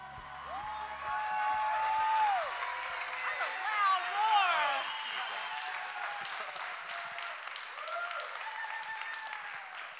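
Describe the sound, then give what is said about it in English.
A church audience at Bethel Atlanta cheers for about ten seconds, with high, swooping whoops and yells over a steady wash of clapping, holding a fairly even, loud level throughout. “Oh, I'm impressed you can cheer that much after a weekend spent in the woods and running around.”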